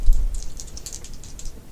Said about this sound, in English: Put some dice down.